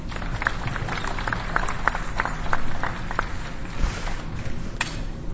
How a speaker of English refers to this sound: Yeah, clap.